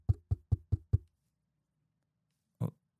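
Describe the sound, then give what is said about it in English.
Five quick, evenly spaced knocks on the door of a house, fairly loud, then a pause and one more thud a moment later. No one speaks. “I'm like, who at my door? Because I don't have visitors.”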